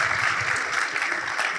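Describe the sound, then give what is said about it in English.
Dense, steady applause from a crowd clapping the children out as they leave for their own program, many hands clapping at once in a continuous crackling wash that holds an even loudness throughout, with no voices standing out. “Can you clap them out, our kids?”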